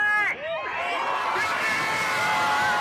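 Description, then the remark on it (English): A large crowd at George Floyd Square, the South Minneapolis intersection where George Floyd was killed, cheering and chanting George Floyd's name after the verdict against Derek Chauvin was read, with many voices rising and falling together in a loud, continuous roar that carries through the whole moment. “People are chanting George Floyd's name now.”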